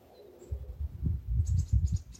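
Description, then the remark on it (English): Birds chirp in a quick run of short, high tweets that repeat through the second half, set against a low, steady rumble of outdoor background noise. “An Invitation from the Birds”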